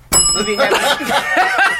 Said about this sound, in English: Couldn't get to that bell quick enough.